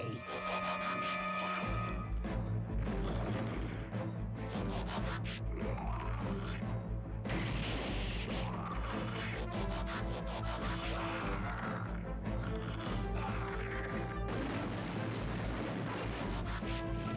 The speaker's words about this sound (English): Wow, they shattered that energy field like it was glass. It wasn't glass.